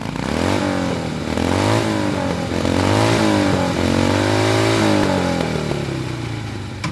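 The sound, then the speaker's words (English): A motorcycle engine revs loudly and repeatedly as guests drive away on it, its pitch rising and falling in bursts as it pulls away, staying steady for several seconds with no talking. “Now I'm shaking my head at the window as I watch our guests drive away on a motorcycle.”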